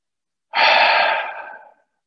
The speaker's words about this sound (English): Do you allow your out-breath out through your mouth? And the out-breath has as much information, the sighs that we make, the yawns.